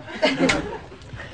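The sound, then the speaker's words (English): A single sudden sneeze, a sharp breathy burst that fades quickly, followed by faint murmuring sounds. “Bless you. Bless you.”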